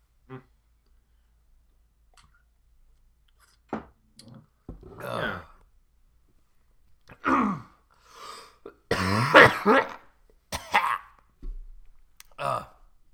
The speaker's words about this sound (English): Maybe put some effects on that, maybe make it a little more pronounced. Yeah, this episode of the podcast is for people who really like listening to people cough.